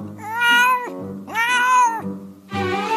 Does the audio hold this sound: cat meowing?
yes